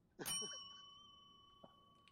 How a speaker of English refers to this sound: I'm noticing the bell is slightly off-key this year. I have no idea why. I've picked the wrong bell sound effect. Yeah, the bell sounds a little bit flaccid.